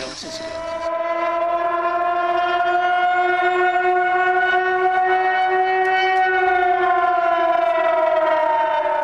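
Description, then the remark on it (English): A civil defense siren in San Francisco wails in one long, loud, sustained tone whose pitch drifts gently up and then eases down, filling the whole stretch with no voices. “That siren means only one thing in this town.”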